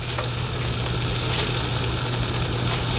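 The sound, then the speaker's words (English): Sandwiches sizzle steadily in a hot pan, a constant crackling hiss with a low hum underneath and no talking. “Oh yeah, they're sizzling now.”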